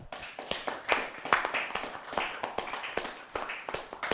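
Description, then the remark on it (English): A crowd applauds at the end of a discussion event, with many overlapping hand claps forming a steady, crackling patter that stays fairly even for a few seconds, with no voices over it. “So let's give us all a round of applause.”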